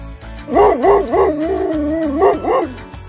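A dog lets out a run of short, rising-and-falling yelping barks, then a long steady howl, followed by a couple more yelps. Close and loud, with a faint low rumble underneath.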